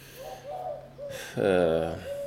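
A bird calls several times: a few short, soft hooting notes followed by one longer, louder wavering cry, heard over a steady low hum, with no talking.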